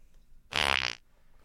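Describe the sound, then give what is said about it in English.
A single half-second blown raspberry, a loud, buzzy mouth imitation of a fart, standing alone between quiet moments with no talking. “That's a fart and jizz sound.”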